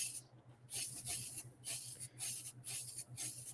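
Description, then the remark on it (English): Hissing bursts from a spray paint can, released in a quick series of short sprays with brief pauses between them, over a faint steady low hum. No one speaks. “But anyway, I'm just going to go to quickly spray this.”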